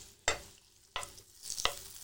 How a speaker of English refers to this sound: Is the pan hot enough? Mate, for some reason, we seem to have lost... We've lost a bit of heat here. But I think it'll be all right. Sizzling has desisted slightly.